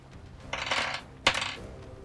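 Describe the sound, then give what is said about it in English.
An action die and challenge dice clatter and tumble across a hard table, a rattling roll followed by a sharp second knock and brief settling, fairly quiet with no talking. “That's an 8 on the action die and a 6 and a 2 on the challenge dice for a strong hit.”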